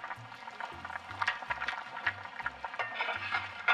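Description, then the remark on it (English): A spoon stirs through a pot of boiling water and root vegetables, including turnip, on high heat, with bubbling, sloshing and occasional low knocks against the pot in a steady, uneven rhythm. No one speaks. “Give it a little stir.”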